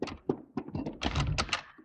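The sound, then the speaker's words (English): A front door opening, heard as a quick run of dull thunks and wooden clunks with a rattling latch, irregular and fairly loud, with no voices. “Oh, that's the front door.”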